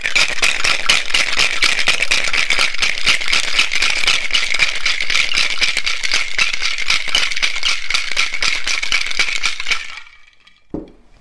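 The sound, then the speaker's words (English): A cocktail shaker holding a cocktail with sugar syrup and lemon rattles hard and fast with ice clattering inside, loud, in a steady rhythmic burst for about ten seconds before stopping abruptly. “Put the lid on the shaker, and away we go.”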